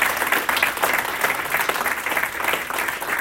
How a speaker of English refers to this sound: So we're offering Mass tonight for them on their 50th wedding anniversary. I think that deserves a round of applause for them.